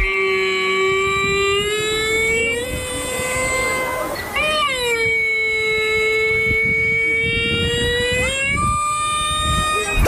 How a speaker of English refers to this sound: I'm going to play this clip of what a camel sounds like.